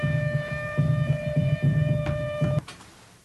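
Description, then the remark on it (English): An alarm blares with a steady, buzzy electronic tone over a rapid low throbbing pulse, holding for over two seconds before cutting off abruptly with a click. No one speaks. “I heard the alarms. Found the alarm.”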